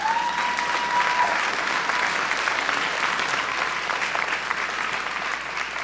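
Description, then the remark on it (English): A large church audience claps together in a dense, steady wash of applause that holds at an even volume for several seconds, with no voices standing out. “Some people say, well, Pastor, are we really supposed to clap and laugh in church? Absolutely.”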